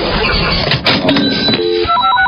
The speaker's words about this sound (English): Just listen for the Channel 94.1 cash register.